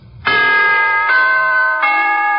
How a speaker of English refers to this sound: To put it in musical form, here is a holiday wish from the NBC Chimes.